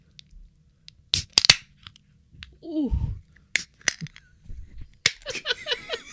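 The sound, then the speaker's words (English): A can of IPA beer being cracked open: several sharp metallic clicks and pops spaced over a few seconds, then a short fizzy hiss, with a person briefly exclaiming in between. “All right, let's crack it open here.”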